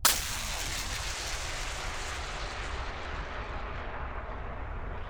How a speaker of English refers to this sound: Then she heard a sound, a deep rumbling sound, like thunder.